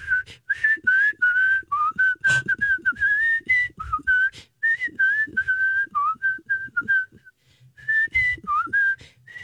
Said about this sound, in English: Listen, I love to whistle. She's like a little songbird.